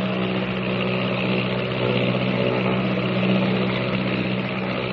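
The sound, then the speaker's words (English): A steady, droning propeller airplane engine of the Silver Bird hums continuously in flight over Venezuela, Colombia and the Amazon jungles, a loud, even low-pitched roar with a buzzing tone that holds constant throughout, with no voices. “Leaving Panama behind, the Silver Bird speeds on. Over Venezuela, Colombia, over the matted jungles of the Amazon.”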